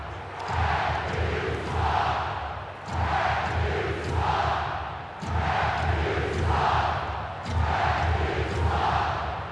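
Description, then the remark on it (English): A hockey arena crowd at a Calgary Flames game against Nashville roars loudly and without pause after penalties are called, the din swelling in regular waves every couple of seconds, almost like a rhythmic chant. “Crowd's involved now.”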